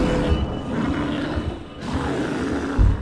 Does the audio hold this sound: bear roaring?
yes